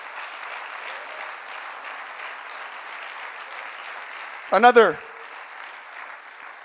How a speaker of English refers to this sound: Would you clap your hands a little louder?